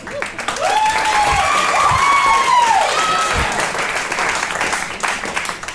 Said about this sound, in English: I don't need your pity claps.